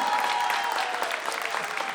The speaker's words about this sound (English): Round of applause, please.